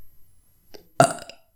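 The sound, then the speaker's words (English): A single loud fake burp made deliberately by a voice, a short throaty belch that bursts out suddenly and fades within about half a second, preceded by a faint breath. “That was a fake burp, by the way.”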